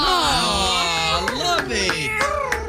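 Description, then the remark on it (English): A small pet cat named Luna meows in a long, wavering, high-pitched cry that bends up and down, then breaks into several shorter meows, fairly loud with no one talking. “I think I'm going to use Luna. Luna is the name of my little kitty cat.”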